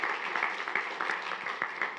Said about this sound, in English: Let's welcome her up with a round of applause.